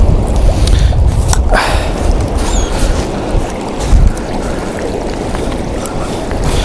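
Water laps steadily at the shoreline of a public beach, with a continuous wash and a low wind rumble against the microphone throughout. No voices are heard.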